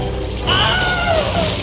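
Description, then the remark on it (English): The Wilhelm scream stock sound effect, first used in the 1952 movie Distant Drums: one loud, strained cry whose pitch slides sharply downward over about a second, heard alone over a low, steady background rumble. “They all thought it was such a funny sound that they all started using it and sneaking it in wherever they could.”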